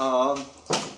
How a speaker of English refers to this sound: Oh, let me close this door so they don't echo.